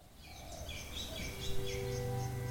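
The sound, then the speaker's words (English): Several birds chirp and trill in quick, repeated high calls in bush at Kawe Purapura, a 20-acre property, over a steady outdoor hush, with a faint low hum creeping in toward the end; no one speaks. “Inside the 20 acres of Kawe Purapura, though, there's still bush and birds.”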